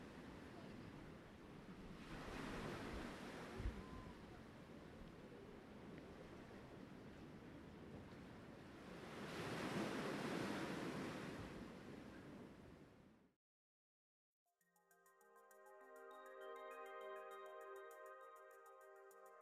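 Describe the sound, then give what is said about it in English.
Ocean surf washes steadily onto a beach, swelling into two louder breaking waves, before cutting to a brief silence and then a tuneful melody. “It was really special to take you with me to the beach.”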